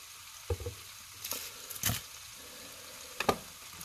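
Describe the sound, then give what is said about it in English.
Torn sage leaves and rosemary crackle and sizzle in hot olive oil in a pan, a steady hiss broken by sharp spits and pops, with a few louder bursts as things shift in the pan. “Ooh, I ripped that sage and the friggin' rosemary in there. I'm going to hit it with a little bit more olive oil.”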